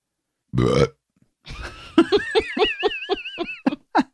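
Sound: burp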